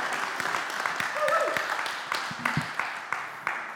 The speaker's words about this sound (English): Get your applause out of the way just now, because you might not be clapping at the end.